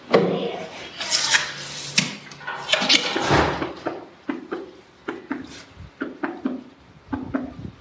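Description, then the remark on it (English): A walrus makes a knock vocalization, a vocal behavior performed on a trainer's cue: a series of hollow, wooden-sounding knocks repeated in a quick, steady rhythm after a stretch of rougher, scraping noises. “He also does a different vocal called a knock.”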